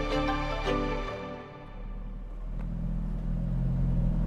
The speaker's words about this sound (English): Summer 1988, Holbrook, New Mexico. Ichiro Suzuki releases the brake pedal and lets his car slowly roll out of the McDonald's drive-thru.